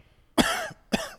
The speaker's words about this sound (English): Yeah, you're coughing.